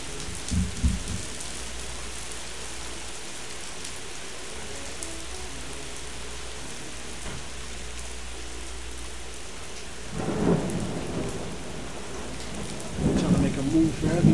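Steady, heavy rain hisses throughout, with deep rolls of thunder rumbling near the start and again, louder, in the last few seconds. No one speaks.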